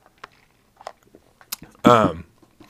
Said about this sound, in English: And so, hold on, taking a sip of my water.